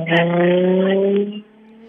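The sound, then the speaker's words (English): A car rushes past, its tyres letting out a loud, sustained squeal that holds steady for over a second before dropping away into quieter background noise. “Obviously, somebody in a bit of a rush to get to a funeral.”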